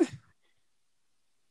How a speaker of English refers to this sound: It was supposed to be a yawn cough, but...